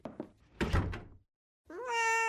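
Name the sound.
cat meowing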